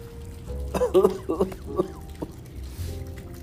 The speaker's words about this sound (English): I want to cough so bad.